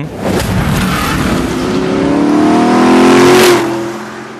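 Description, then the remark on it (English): A powerful Shelby Cobra engine with Weber carburetors revs hard, its pitch climbing steadily to a loud, throaty peak before easing off, with a raspy intake snarl layered over the deep rumble. “We'll play it for you. Draft Webers.”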